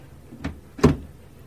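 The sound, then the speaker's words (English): A train compartment door swings shut with two quick knocks, a lighter click of the latch followed by a heavier, louder thud, then quiet. “You won't mind if I close the door between us?”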